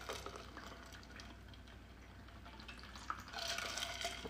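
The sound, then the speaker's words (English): Someone quietly sips tea: faint liquid sounds over a low steady hum, a small click, then a longer, breathy slurp near the end. No one speaks. “But I need my glasses to read, my reading glasses, and I need a sip of my tea.”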